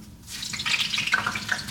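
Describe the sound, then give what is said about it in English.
Clean cooking grease with no burnt pieces pours steadily into a container, a continuous splashing, gurgling trickle with small bubbly pops, lasting a couple of seconds with no one talking. “All right, here, we're gonna pour this into here.”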